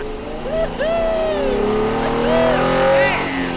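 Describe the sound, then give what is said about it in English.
A car engine revs loudly as the car accelerates away down a street, its pitch rising and falling in repeated surges. The steady roar holds for a few seconds with no break. “revved the engine and gunned the car down the street, hooting and hollering.”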